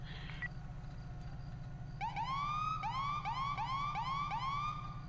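A police car siren in a video game starts up about two seconds in and wails in quick repeating rising sweeps, loud, over a steady low engine rumble.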